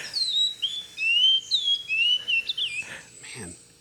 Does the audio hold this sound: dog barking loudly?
no